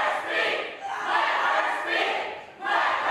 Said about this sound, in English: And when Republicans once again voted to block her from speaking and muted her mic, chaos broke out with protesters yelling from the gallery and chanting.